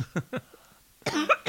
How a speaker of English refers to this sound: That'll make you cough.